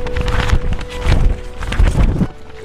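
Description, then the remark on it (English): Papers rustling and crinkling in several loud, crackly swells over a few seconds, with a faint steady hum underneath and no voices. “They actually captured the sound of papers rustling?”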